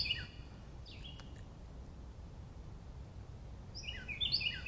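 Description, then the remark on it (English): A finch, a songbird about a couple of feet away, sings in short bursts of bright, high chirping notes, once at the start and again near the end, over a steady low outdoor rumble, with no one talking. “Oh, it's a finch. Oh, he was right there. That's so cool. Hey, buddy. Such a beautiful song.”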